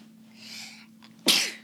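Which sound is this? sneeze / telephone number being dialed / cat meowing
sneeze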